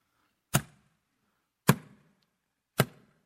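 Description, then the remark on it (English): Three loud, sharp knocks on a door, spaced about a second apart, each a hard thud with a short ringing decay, and no voices in between. “Do you hear that knock?”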